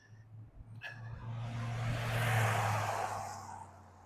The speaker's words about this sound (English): You'll hear cars going by and stuff like that, because I'm walking in the neighborhood. There's very few cars ever come by here, but as soon as I start recording, it's like an expressway. There's been like five cars come by now.